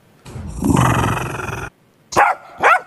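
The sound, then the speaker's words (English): A dog growls in a long, low, rumbling snarl, then lets out two sharp, loud barks after a short pause, aggressive-sounding, with no one talking. “What you'll hear is terrifying barking.”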